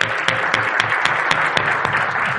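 A crowd applauds steadily, many hands clapping in a dense, even wash with a few sharper claps standing out at regular moments, sustained at a fairly loud level throughout, as a guest is invited up on stage for a fireside chat.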